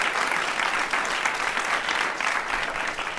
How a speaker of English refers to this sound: Please give this man a round of applause.